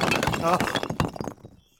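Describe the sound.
A figure of Mr. Curtis is knocked over, toppling with a sharp thunk and shattering into many pieces, followed by a quick scatter of clattering pieces that fades out, with voices talking over it.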